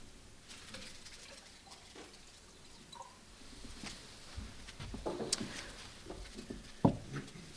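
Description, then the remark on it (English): Water is poured into a glass, faint, with soft splashing and trickling, then a couple of sharper clinks near the end. No one speaks. “Can I have some water?”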